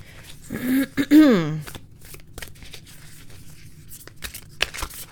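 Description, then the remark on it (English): A brief hummed vocal sound gives way to dry papery flicks and rustles as a deck of oracle cards is shuffled repeatedly, with soft, uneven snaps continuing to the end. “Okay, let me go ahead and give these a good shuffle.”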